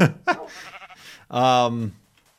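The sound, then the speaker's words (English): A single drawn-out sheep bleat from a video game, loud with a wavering, quavering tone, follows a moment of brief talk and ends in silence. “I looked off at the corner of my eye while I was reading this, and I thought that was a witch. But witches aren't in this version of the game. And it's a sheep.”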